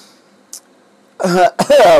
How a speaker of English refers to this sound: as I kind of been coughing and hacking here a little bit, it's that season. It's that time.